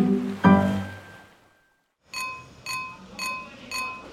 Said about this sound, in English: Henry can hear seagulls and the ocean's waves